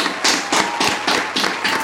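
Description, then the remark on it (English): A short burst of applause for moms: steady, rhythmic clapping at a brisk even pace, about six or seven sharp bright claps with no voices over them. “And for all the moms out there, I just want to give you guys a round of applause for your hard work.”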